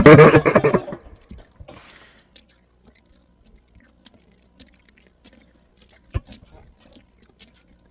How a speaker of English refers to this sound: They can hear you chewing. Who's chewing?